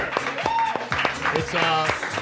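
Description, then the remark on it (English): A live crowd at Comedy Sports Philly on a Wednesday night applauds and cheers, dense clapping with scattered whoops and shouts rising above it, steady and fairly loud throughout. “We're live at Comedy Sports Philly. This crowd is ready.”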